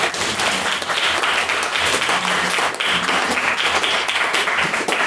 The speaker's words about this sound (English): So, round of applause for all.